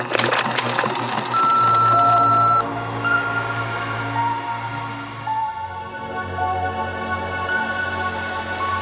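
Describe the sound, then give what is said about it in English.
A single loud, steady electronic answering machine beep rings out for about a second, clean, over a low humming drone that continues after it stops. “Now, prepare yourself. For the beep waits for no one.”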